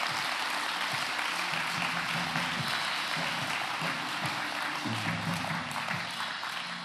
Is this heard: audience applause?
yes